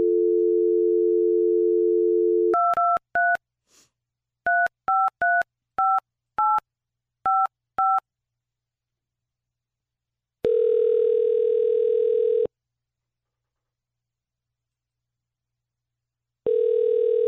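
A steady phone dial tone gives way to a quick run of about a dozen touch-tone keypad beeps as a call is placed for a War of the Roses segment, then after a pause a ringing tone sounds, repeating once. No one speaks.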